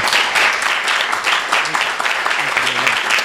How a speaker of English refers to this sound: Let's give a warm round of applause to Brett Martin.